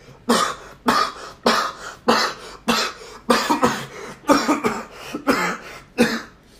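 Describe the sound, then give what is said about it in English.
A rapid string of about nine or ten loud, forced coughs in close succession, each sharp and harsh, sounding exaggerated and deliberate, with no talking in between. “I'm going to sound like a really bad person for saying it, but I hate it when people cough too much.”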